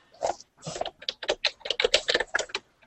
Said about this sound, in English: that keyboard's really loud. No, your mic's really good. No, that keyboard's really loud